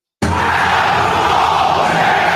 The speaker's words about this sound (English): But then he also does the Adam Cole Bebe, and the whole crowd yells Adam Cole Bebe.